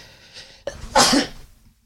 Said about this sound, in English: Please edit out that sneeze. Although now I'm probably going to listen to this and hear the sneeze and hear this part too.